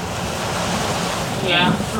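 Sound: rain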